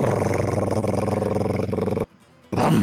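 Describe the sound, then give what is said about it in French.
A loud, rapid drum roll rumbles steadily for about two seconds, stops abruptly for a brief half-second gap, then starts up again just as loud. “Tu peux faire le roulement de tambour.”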